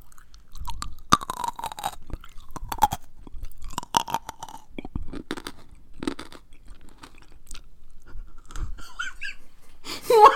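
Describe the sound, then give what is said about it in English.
Loud crunchy chewing of pickled radish, with repeated sharp crisp bites and wet mastication noises continuing steadily throughout, along with some squeaky breathy sounds. “I didn't realize it was going to be so crunchy. Well. I thought those were pickled. They're pickled radish.”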